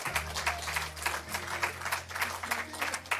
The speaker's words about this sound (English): How many love Jesus? If you do, would you clap your hands?